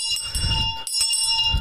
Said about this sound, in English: This bell sucks, by the way. I gotta fix it.